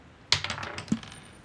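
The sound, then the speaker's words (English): Dice rolled for perception checks clatter across a hard tabletop: a sharp first strike, a quick run of small tumbling clicks, then a second knock before settling, with no voices. “Everybody make perception checks. Right dice.”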